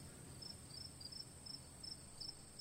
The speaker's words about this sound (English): As crickets chirp.